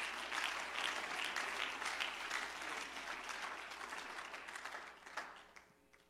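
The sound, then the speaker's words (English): An audience at a church service applauds steadily as a hand clap of praise to the Lord while the pastor comes, a dense wash of many hands clapping at once that holds strong for about five seconds, then thins and fades out at the end. “Why don't we give the Lord a hand clap of praise while your pastor comes?”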